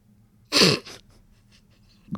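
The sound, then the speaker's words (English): A single sharp sneeze bursts out, followed by a brief breathy trailing sound, then near silence with a faint low background hum. “God bless you”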